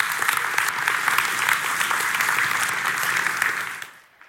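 An audience applauds in a steady, dense wash of clapping that holds for about three and a half seconds, then quickly tapers off into silence.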